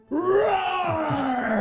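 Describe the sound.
A man voices a long, drawn-out roar, loud and strained with a gravelly edge, starting high and slowly sliding lower in pitch over about a second and a half.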